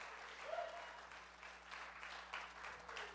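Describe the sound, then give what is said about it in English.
A worship audience claps for God steadily for about 15 seconds, a dense, sustained wash of many hands applauding together at fairly even loudness, with a brief faint voice or whoop rising once early on. “If you believe it, take 15 seconds and clap one more time unto the Most High God.”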